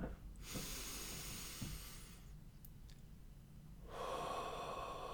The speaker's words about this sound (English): Take a few deep breaths.